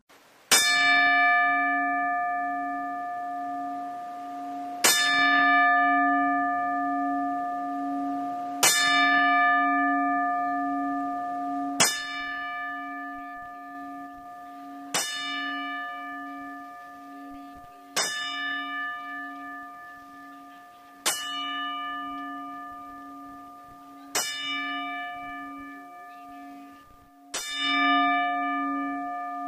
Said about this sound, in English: And now, to salute those two great people and our condolences to their friends and family, here are the 10 bells.